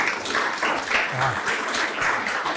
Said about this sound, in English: Yeah, a round of applause on that.